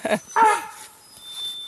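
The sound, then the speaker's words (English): Zoha, a German Shepherd puppy on a walk in a primary forest, pants in two quick, breathy bursts, the second louder and slightly whiny. Softer breathing follows while a thin, steady high tone hangs in the background. “the other panting that you hear is Zoha, the German Shepherd puppy who's accompanying us on the walk.”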